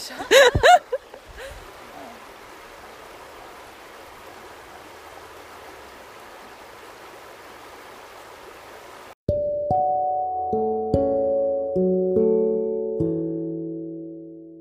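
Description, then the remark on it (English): A steady babbling brook flows with a continuous rushing hiss for about nine seconds, then cuts off abruptly as gentle, ringing melodic notes take over. “that was … featuring Babbling Brook”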